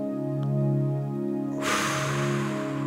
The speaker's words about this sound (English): If you can, just close your eyes. Take a deep breath in. Hold it for a second. Breath out.